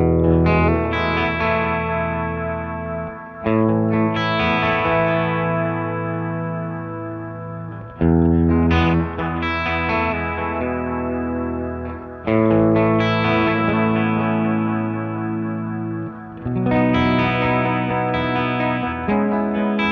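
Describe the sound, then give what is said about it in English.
A sustained, harmonically rich instrument plays chords with a gentle oscillating modulation effect underneath, the effect mix turned up slightly and the tone control rolled down so the tone is darker and softer, loud, with four phrases restarting every few seconds and no voices. “So as you can hear, it's like oscillating a little bit in the background while I'm playing, but it's not too overbearing.”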